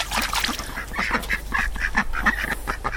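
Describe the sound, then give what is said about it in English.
Several ducks quack in a busy, overlapping chorus, short nasal calls tumbling over one another for the whole stretch over a low steady background hum, with no one speaking, as they are let out of the chicken house where they live. “First of all, I'll just let the ducks out.”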